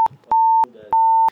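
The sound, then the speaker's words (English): Two loud, steady censor bleeps, each a pure high tone lasting about a third of a second, with a short stretch of faint, muffled speech between them. “By the way, can you like beep all this out? Because if my wife hears this, it's gonna be censored.”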